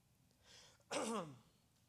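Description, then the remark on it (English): A single harsh cough bursts out after a soft breathy intake, a rough voiced hack lasting about half a second, then quiet. “I think he's humbling me with his cough. It literally came out of nowhere.”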